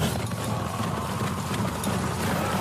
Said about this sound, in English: Freaking Nazgul over there riding some horses